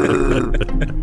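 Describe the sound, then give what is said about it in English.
A voice imitates a growling, roaring stomach with a low, rumbling gurgle that holds steady and loud for about a second, like a drawn-out burp. “They probably just thought, you know, it was Dad's stomach that he was hungry. Probably. And that was that roar was coming down from his house.”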